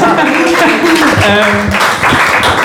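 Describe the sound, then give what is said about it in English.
A crowd applauds loudly and steadily, the dense clapping mixed with whooping, cheering voices throughout the short burst. “Nice, round of applause for that.”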